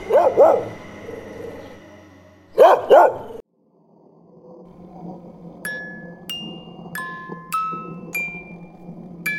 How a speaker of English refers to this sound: Woof. I guess even man's best friend has his limits.